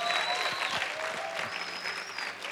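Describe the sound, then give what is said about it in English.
An audience at a mega church service applauds steadily to welcome back a returning woman, a dense wash of many hands clapping together that fills the space, with faint cheers or voices rising through the noise. “Clap for her. Clap for her, she's back.”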